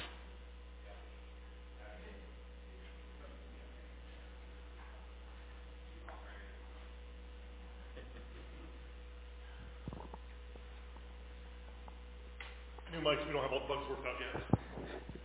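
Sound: static hum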